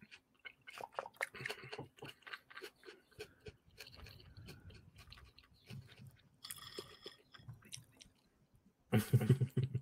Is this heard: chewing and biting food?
yes